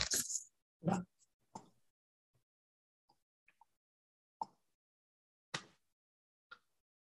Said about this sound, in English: Excuse me a second. I'm gonna cough.